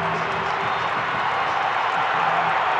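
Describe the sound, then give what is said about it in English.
A steady, dense roar of a basketball arena crowd on its feet cheering late in a close game, loud and sustained without breaks, with no clear voices standing out. “Crowd comes to their feet.”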